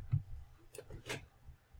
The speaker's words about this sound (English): Ah, who's rolling dice?